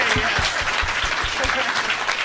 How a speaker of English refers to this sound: Let's have a round of applause for all of my guests, you guys.